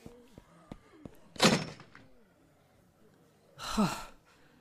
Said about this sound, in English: There's a store over there that looks intact and empty. Get in. Hurry. Barricade the door.